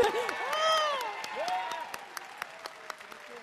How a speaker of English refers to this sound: Let's give them a big round of applause.